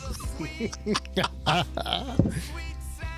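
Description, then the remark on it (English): A person's voice imitates a donkey's bray, a run of strained, wavering hee-haw cries rising and falling over about three seconds, loud. “The sweet sound of a donkey screaming in the middle of the night.”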